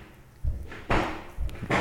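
Fireworks going off outside, close by, in a quick string of about four muffled booms, one louder and longer than the rest, with no talking over them.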